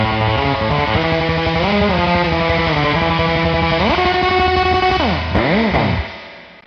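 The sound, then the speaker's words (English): Electric guitar played through a reverb pedal, soaked in drippy, splashy reverb, with sliding, bending notes that swell and wobble in a dense wash of sound before trailing off at the end. “you know, that unique sort of reverb that's bouncing around in my head that I just can't ever seem to get. I'm chasing that drippy dragon, you know?”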